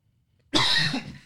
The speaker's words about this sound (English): Yeah. It's a good cough. Thank you. I've been coughing a lot. It's a healthy cough. I think it's allergies. Or I'm sick, but I don't think I'm sick. It's been like a week.